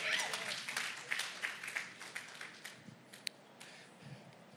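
An audience claps together in a dense burst of applause that is loudest at the start and gradually thins into scattered, fading claps over several seconds.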